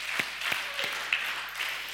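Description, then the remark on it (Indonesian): A standing crowd applauds steadily for a couple of seconds, a dense wash of many hands clapping with a few sharper claps popping out above it. No one speaks. “Boleh, tepuk tangan dulu, biar semangat.”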